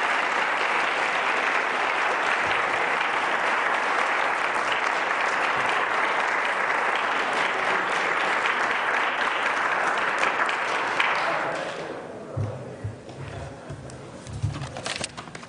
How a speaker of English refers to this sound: Yes, congratulate them with your applause.